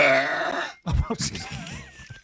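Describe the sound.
A loud, drawn-out belch with a rough, buzzing tone lasts under a second and stops abruptly, then someone starts talking right after.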